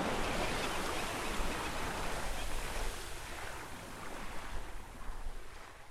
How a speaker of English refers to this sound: One of Albert's favorite thinking places was his little sailboat. He loved to let his mind wander as the wind blew him across the water.